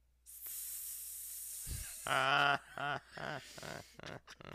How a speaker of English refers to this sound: Think about the sounds that snakes make.